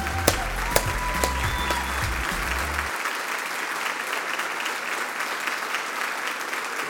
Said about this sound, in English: Come on, His Church, stand up on your feet. Let's give her a big hand clap as she comes. We're so glad you're here today.